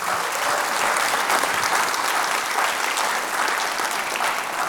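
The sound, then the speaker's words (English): A live audience at the National Constitution Center in Philadelphia claps steadily and loudly, a dense wash of many hands with no break, no voices standing out over the applause. “Friends, let's have a round of applause for our We the People audience.”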